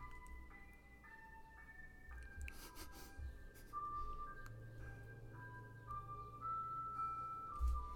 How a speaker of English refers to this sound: And this fucking ice cream truck decides. They don't want to see us win. They just don't want to see us win. Let's just wait. I think it's passing by.